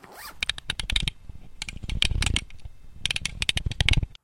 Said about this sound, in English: My sweatshirt's flopping around and the zipper keeps hitting the chair, and that's going to ruin the take. I'll handle the ruining of the takes, thank you, zipper.